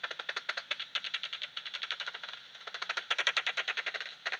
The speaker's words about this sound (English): So I think we've got a common pipistrel and a soprano pipistrel. I think if we tune down to 45, we'll still hear it slapping. Yeah, that's a common pipistrel we've got. So that's our second species of the night.